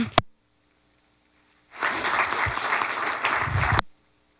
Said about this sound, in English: They're just real. They're great people. I think we need to applaud them.